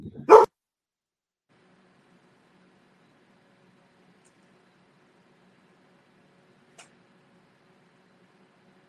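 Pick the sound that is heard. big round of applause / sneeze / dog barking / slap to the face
dog barking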